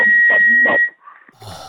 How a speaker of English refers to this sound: I had to put the phone down because it was whistling.